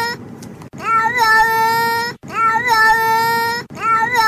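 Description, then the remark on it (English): A cat meows over and over in long, drawn-out two-syllable calls that sound a lot like "hello," loud and tonal with a rising then falling pitch, repeated about three times with brief gaps. “Back in January, there was another cat that also said hello.”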